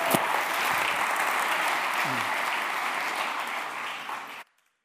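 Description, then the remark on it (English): An audience at a church motorcycle rally at Heritage of Faith Christian Center applauds steadily for about four and a half seconds to welcome a speaker, a dense, even wash of clapping that cuts off abruptly into silence. “Give him a good hand as he comes.”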